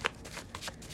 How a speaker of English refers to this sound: I'll be shuffling the tried and true on this channel, the Tarot Mucha.